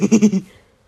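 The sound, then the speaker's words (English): A person imitates a cow's moo in a short, wobbling burst of four quick pulses, fairly loud, fading out quickly with no other talking, as part of the interrupting cow joke. “Have you heard the joke about the interrupting cow?”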